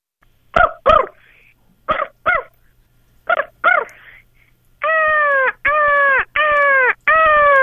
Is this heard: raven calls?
yes